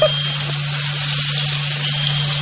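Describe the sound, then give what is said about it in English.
Steady, loud sizzling of two eggs frying in a pan, a dense crackling hiss that holds constant throughout with a low steady hum beneath it and no talking. “Now I am doing the cracking two eggs into a pan.”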